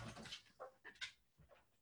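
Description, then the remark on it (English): A female dog whimpers softly in a series of short, high, whiny bursts, four or five in quick succession, quietly, wanting to be let out, with no one talking. “And I need to let the dog out. She's making that particular sound which says, better let her out.”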